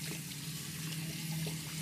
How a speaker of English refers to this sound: headed to the sink to wash his hands and brush his teeth. He bent over and splashed his face with cold water.